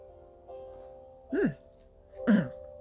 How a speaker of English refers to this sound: Excuse me, got hiccups.